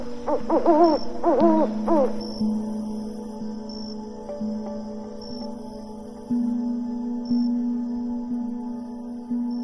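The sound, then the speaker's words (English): An owl hoots a few times in quick succession near the start, fairly loud, then fades out, leaving a steady low hum underneath. “It's time to say goodbye to our special friend, the owl, now.”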